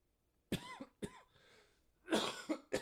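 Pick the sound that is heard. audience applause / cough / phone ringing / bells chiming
cough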